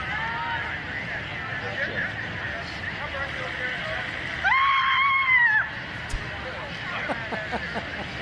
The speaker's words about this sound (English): Come on. That classic Ryan Gosling scream. The man can scream.